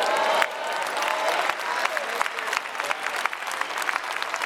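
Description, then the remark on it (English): A crowd claps steadily in a dense, continuous patter of many hands, loud and sustained throughout, with a brief swell of voices near the start and no distinct speech. “Yeah, y'all clapping now, but some of y'all in here ain't never been to Bible study.”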